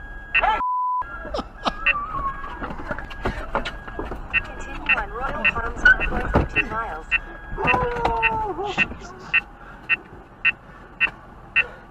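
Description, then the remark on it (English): A Valentine 1 radar detector alert beeps steadily: a long run of short, sharp, high-pitched bleeps repeating roughly every half second, sounding over muffled voices and crying children. “And then I think he's got a Valentine 1 radar detector going off in the background.”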